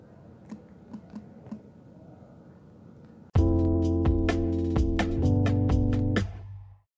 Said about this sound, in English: If you hear me typing a lot... wait, pause really quick, please.